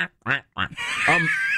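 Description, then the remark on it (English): Two short, nasal duck quacks in quick succession, then a longer, drawn-out quacking call with a raspy, buzzy edge, in a studio. Fairly loud, with no other sounds around it. “I'd heard, how'd a duck get in the studio?”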